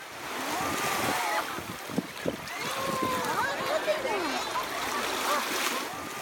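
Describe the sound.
Steady surf washes onto an ocean beach with a broad, hissing roar as a little girl puts her feet into the ocean for the first time, playing with her grandmother; voices, including high-pitched, child-like sounds, rise and fall over the rushing water.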